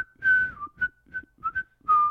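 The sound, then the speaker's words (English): A short whistled video game music lick of about six notes, opening and closing on longer held tones with quick, clipped notes between, carried on a clear mid-high whistle with some breathy air. “It's just that lick over and over.”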